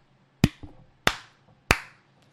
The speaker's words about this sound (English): All right, let's clap.